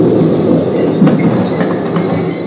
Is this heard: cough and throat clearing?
no